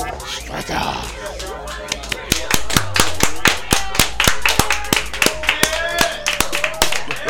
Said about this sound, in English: You got to avoid clapping right into the mic. Oh, yeah. That was really loud. I'm a mic clapper.